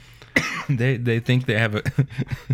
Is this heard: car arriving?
no